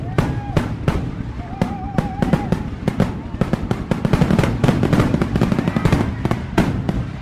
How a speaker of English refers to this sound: Those are fireworks. But if you have suffered trauma, that could be a trigger.